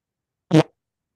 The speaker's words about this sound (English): Damn, dude, that was a fucking rock solid fart right in the mic. That was pretty fucking impressive. Were you able to hear that? Pretty fucking impressive, man. Yeah, dude, it blew out the speakers.